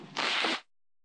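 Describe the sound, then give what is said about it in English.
A preacher blows his nose once during a sermon: a short, loud, breathy burst of rushing air lasting about half a second, followed by silence. “Turn me down, I'm about to blow my nose.”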